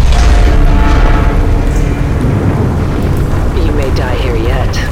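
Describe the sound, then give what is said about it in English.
Heavy, continuous booming rumble of explosive disconnects firing as a flooding deep-water drilling platform breaks into its separate component structures, with deep roaring low end and strained metallic groans rising and bending over the last seconds. “The explosive disconnects you recklessly fired broke the separate component structures free.”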